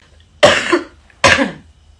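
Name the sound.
throat clearing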